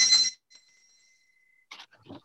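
A single sharp, bright bell strike rings out, its metallic tone lingering and fading for over a second before a voice starts speaking.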